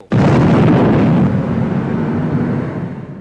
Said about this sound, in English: Then he tapped the ash from the tip of his cigar off and lit the fuse of the cannon he was standing next to.